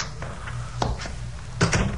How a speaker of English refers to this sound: I was examining these, especially those involving a bit of cheesecake, when I heard a key in the door of the private entrance.